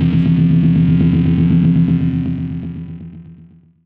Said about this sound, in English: So maybe a black leather jacket could sound like an electric guitar run through an orange amp or some sort of distortion pedal.